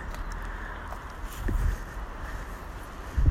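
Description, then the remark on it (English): Steady outdoor wind rushes across the microphone on a stormy, partly cloudy day during a walk, with a couple of heavier low gusts buffeting it midway and again at the end. No one speaks. “Clear sky in some parts and cloudy and windy.”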